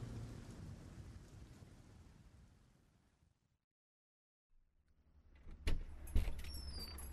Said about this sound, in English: The rain continued to fall.